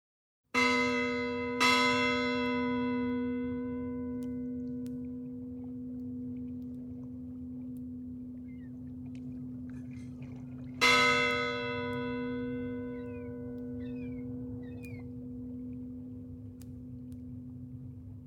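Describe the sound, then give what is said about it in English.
A church bell tolls three times, part of a tolling of nine bells, two strikes close together and a third after a long pause, each leaving a deep, sustained hum that rings on with no voices present. “So before we get started, in honor of Ahmaud and Breonna and George, 9 bells.”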